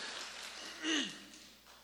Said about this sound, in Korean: 우리 찬양팀 코러스도 그렇고 아침 일찍 와서 헌신하는 모습이 아름답고 한번 우리 격려의 박수를 한번 할까요? 예. 감사합니다.